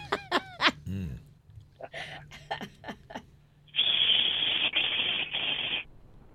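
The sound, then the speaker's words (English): A person vocally imitates ironing their own face with a steam iron: a few short, honking voiced noises and a sliding squeal, followed by a loud, sustained breathy hiss with two brief breaks. “what would ironing your own face sound like?”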